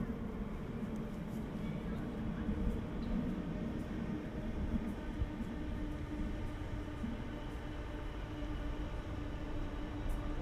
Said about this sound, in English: So yeah, little interlude, can you hear a train passing by?